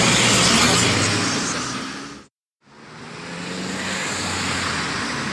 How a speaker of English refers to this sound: I've been stood here now for 5 minutes, and the cars have been relentless.